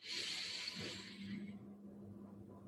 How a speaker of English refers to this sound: And let us finish this practice with three deep breaths together. Breathing in.